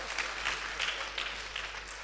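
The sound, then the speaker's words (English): A crowd claps steadily for a couple of seconds, a dense, even patter of many hands with no voices over it. “Let's clap for her now.”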